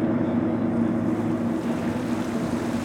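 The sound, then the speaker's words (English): A boat cruises steadily around the Southeast Farallon Island past a field research station, its engine a constant low drone beneath the wash of waves and a rush of wind against the microphone, with no voices. “We cruise around the island, getting a better view of the field research station, and I'm delighted to see some sea lions swimming playfully after the boat.”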